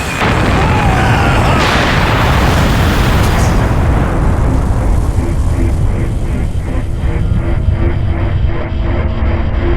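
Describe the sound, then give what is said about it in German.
A loud explosion in the fuel rod chamber of the Chernobyl nuclear reactor bursts at once into a heavy, roaring rumble, its crackling upper hiss gradually dying away while a deep low boom lingers for several seconds. “Eine Explosion in der Brennstabskammer.”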